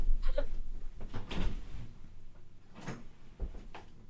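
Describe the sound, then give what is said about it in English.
A male cat batting at and tumbling around in a paper bag: irregular crinkling, rustling bursts and soft thumps, moderately loud, with no talking. “Never mind, he's just playing with a paper bag.”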